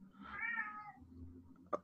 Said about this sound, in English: Even the cat is pissed off. Even the cat is sick of this shit.